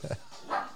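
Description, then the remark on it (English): A person briefly imitates a dog's bark with their voice: two short, fairly quiet barking bursts, the second higher and brighter than the first, with no other talking. “Yeah, you should have just started barking at him.”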